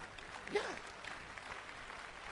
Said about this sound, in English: It's a good place to clap your hand.